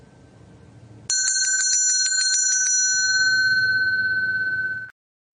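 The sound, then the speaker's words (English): A bright bell is struck sharply several times in quick succession, then left to ring out with a long sustained tone that fades and cuts off, with no one talking over it. “If I had the patience and I didn't think people were going to sign off, I would ring that bell 21 times.”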